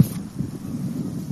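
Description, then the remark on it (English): Outdoor twilight ambience on the Mornington Peninsula, over a paddock looking down to the ocean: a steady, low, breathy rumble like wind or surf, with a faint brief hiss at the very start and no voices. “All right, and that's the sound of Mornington Peninsula.”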